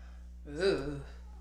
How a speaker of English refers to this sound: Ooh. Our cat, he's making an appearance for you guys.